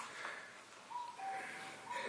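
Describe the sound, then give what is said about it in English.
A faint cuckoo calls a two-note descending phrase over steady outdoor background hiss, with no voices present. “Listen to the cuckoo bird.”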